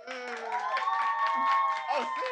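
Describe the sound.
A live audience cheers and whoops, making noise on the host's call to vote, in a steady, sustained roar, with high voices holding long shouts over a bed of scattered clapping that runs for a couple of seconds.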